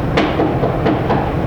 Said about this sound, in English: Suppose I come back here, I'm going to see Jimmy. I come back here, and I knock on Jimmy's door.